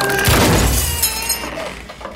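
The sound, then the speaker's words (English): A door is forced open with a sudden loud crack and heavy thud, followed by splintering, rattling and bright tinkling debris that fades over about two seconds, with no voices. “You broke her door.”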